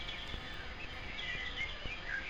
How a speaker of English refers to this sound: Typically, by July, only the most raucous of avian songsters are still singing. So we should enjoy birdsong while we can.